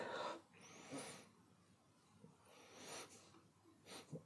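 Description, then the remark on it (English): Several short, breathy sniffs from a man sniffing his face milk, spaced irregularly over a few seconds, with quiet pauses between them and no talking. “5 silent minutes of a man sniffing his face milk.”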